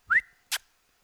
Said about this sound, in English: That didn't sound like a puppy. That sounds like a full-grown man. No. That is that is a 130-pound Great Pyrenees.